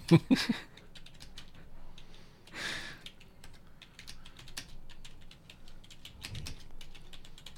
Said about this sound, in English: I can't even see the screen, so I'm just typing.